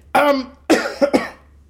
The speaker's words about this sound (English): I'll try and edit out that cough.